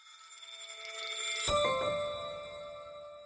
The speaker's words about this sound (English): He spoke to me from Milan on the last day of Men's Fashion Week there, and you can even hear the church bells accompanying our conversation in the background.